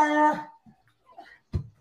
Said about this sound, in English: Goddamn dogs.